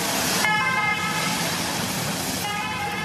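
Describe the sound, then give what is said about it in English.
A two-tone ambulance klaxon blares loudly and steadily amid heavy road noise as an old ambulance takes a cyclist down a mountain during the Tour de France, its alternating horn notes carrying over the rumble of traffic with no one speaking. “With the old diddly-do, diddly-do, klaxon on the old ambulance, gone down the mountain, finished.”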